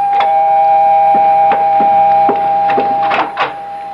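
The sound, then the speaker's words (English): A doorbell rings at the front door of a brownstone house in one long, steady, mid-pitched buzzing tone lasting several seconds, with scattered soft knocks and clicks underneath. No one speaks. “Oh, here's young patrolman Ed Helmut at the front door of the brownstone house where Jennifer and her sister Maggie live.”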